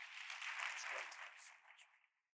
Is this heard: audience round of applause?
yes